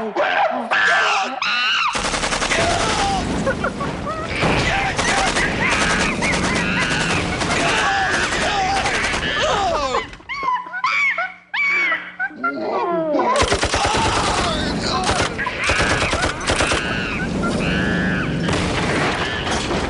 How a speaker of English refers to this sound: The monkey shot me with the musket.